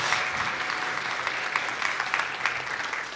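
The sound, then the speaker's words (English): An audience applauds steadily, a dense wash of many hands clapping at once with no pause, holding a fairly even loudness from start to finish. “No, a lot of round of applause than that.”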